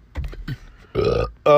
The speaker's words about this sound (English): So God damn, I can't stop burping shit.